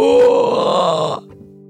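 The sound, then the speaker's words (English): A person does a loud, sustained imitation of a howler monkey, offered as what Bigfoot might sound like: a single guttural, groaning roar of about a second that cuts off abruptly, leaving a faint low hum. “Or maybe they would sound like a howler monkey, like.”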